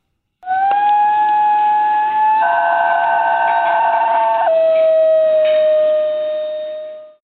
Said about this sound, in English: They do not bark. Instead, they sing or howl, which often has that spooky thing at the end where it sounds haunted. I'll play it for you again just so you remember.